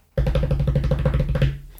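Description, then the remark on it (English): A rapid drumroll beaten on a tabletop, a fast run of dull, low thuds lasting over a second before stopping abruptly, with no voices. “Yes, not sure my banging on the table drumroll was quite up to scratch there, but...”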